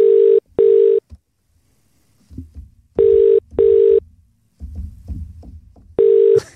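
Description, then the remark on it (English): A phone line's ringback tone on an outgoing call placed from radio station The Rock: loud, steady double buzzes repeating about every three seconds, with low muffled rumbling in the gaps between rings. “Just bucking the trend of answering my phone.”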